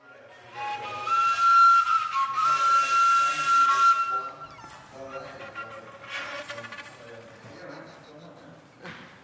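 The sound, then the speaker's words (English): A homemade wind instrument built from recycled objects, called the pájaro volador ('flying bird'), sounds a sustained, breathy whistle on one steady high pitch with a rushing airy hiss, then breaks into softer, wavering and fluttering notes before fading. “her pájaro volador, one of her many homemade instruments built from recycled objects”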